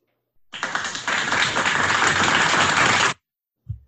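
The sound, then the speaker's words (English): A burst of applause from a crowd, dense and steady, starting and stopping abruptly after about two and a half seconds, followed by a short low thump. “So this is definitely another couple that deserves an applause.”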